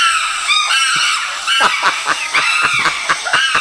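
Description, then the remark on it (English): A screaming chimpanzees sound effect from a phone sound-effects app: a loud, continuous chorus of shrill, high-pitched shrieks and hoots overlapping in rapid, irregular bursts, with no talking. “Screaming Chimps”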